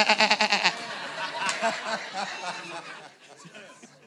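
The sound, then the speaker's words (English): A person mimics a sheep's bleat with a wavering, pulsing "baa" for about half a second, followed by a few seconds of lively, overlapping talk and murmuring from a crowd. “More sheep.”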